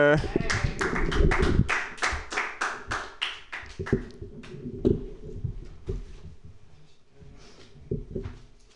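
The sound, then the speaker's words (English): A burst of audience applause for a comedian being introduced on stage, dense and loud at first, then thinning into scattered claps over several seconds, with some indistinct voices murmuring underneath. “Clap more for me, motherfuckers.”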